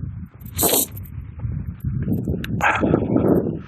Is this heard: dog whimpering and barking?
yes